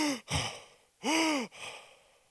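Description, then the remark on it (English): A person imitates the labored, rattling breathing of a dying grandfather: two or three loud, raspy inhales with a groaning voiced edge, then a trailing breathy exhale, without any words. “We got to my grandpa's room Friday morning. He was breathing like this.”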